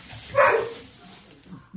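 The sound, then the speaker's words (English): A single sharp dog bark rings out, followed by a quieter stretch with a faint low murmur and a brief noise right at the end. “I was expecting the dogs to have started barking”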